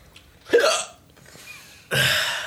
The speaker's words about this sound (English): I think I have the hiccups now, right before we record.